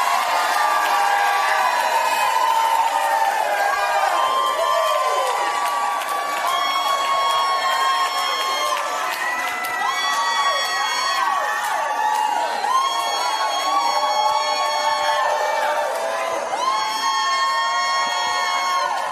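A large audience shouts, cheers and whoops continuously, with many overlapping high voices rising and falling in loud, sustained waves throughout.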